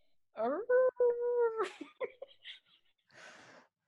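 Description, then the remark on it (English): A human voice imitates a werewolf at midnight: a couple of short yelps lead into a held, steady, fairly high wail, followed by choppy breathy sputters and a final hissing exhale. “It was supposed to be a werewolf at midnight.”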